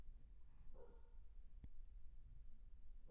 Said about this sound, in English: Yeah, my dog is, I don't know what she yelling at.